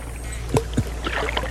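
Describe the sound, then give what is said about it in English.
Kayak paddling through water: two quick splashing paddle strokes, followed by a light, bubbling swirl of water over a steady low hum. No voices. “Oh, the kayak. Welcome to the kayak adventure.”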